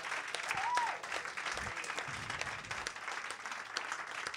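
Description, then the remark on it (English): Sustained audience applause for guest professor Laura Eve Engel at the close of an evening poetry-writing event, a dense wash of many hands clapping steadily at moderate loudness for several seconds, with a brief whistle-like tone near the start. “One more round of applause for Laura Eve Engel, our professor for tonight.”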